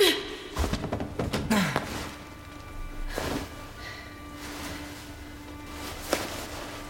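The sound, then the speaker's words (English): Heavy wooden thuds and knocks cluster near the start, followed by scraping and shifting as a wooden board is dragged and bumped about while a person who lost their key is helped to climb inside, with a sharp knock later on. No one speaks. “Help me in. Help me with the board,”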